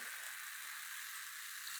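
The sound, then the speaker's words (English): Tonic water fizzes steadily in a glass, a soft, continuous crackling hiss of bursting bubbles with no voices, holding an even, quiet level throughout. “Good fizz. It does have a nice fizz.”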